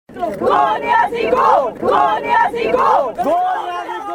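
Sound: protesters chanting slogans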